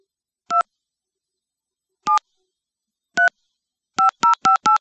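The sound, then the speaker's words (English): Telephone keypad tones beep seven times, clear, as a phone number is dialed: three separate beeps spaced over a few seconds, then four in quick succession. No voices are heard. “Dial tone.”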